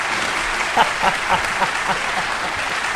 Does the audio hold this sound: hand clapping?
yes